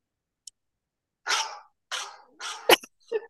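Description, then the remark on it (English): A phone wake-up alarm tone made of harsh, cough-like bursts: three rough coughs in quick succession, a sharp click, then the start of another round, moderately loud. “I literally wake up on the first sound of this thing. Here's mine.”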